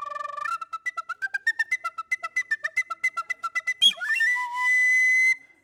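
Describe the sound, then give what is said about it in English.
A quick flute solo: a brief held note, then a run of about twenty rapid staccato notes, a sudden swooping slide, and a long sustained high note, with no talking. “We're just going to make this so arbitrary, and I'm just going to do the one of the person who screams the loudest, but first we need to do an ADD flute solo.”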